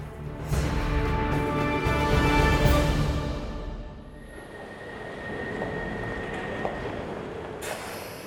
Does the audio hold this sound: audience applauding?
no